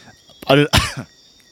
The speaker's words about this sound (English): The cough's back. You haven't coughed for 2 days. No. That's the pressure.